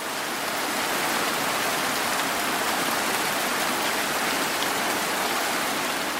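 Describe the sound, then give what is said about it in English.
Heavy rain pours down in a steady, dense, loud hiss, with no pauses or voices for the whole stretch. “In 1 week, Hurricane Harvey dumped more than 40 inches, well over a meter of rain on Houston, Texas.”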